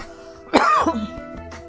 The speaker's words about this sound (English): Here I go coughing again.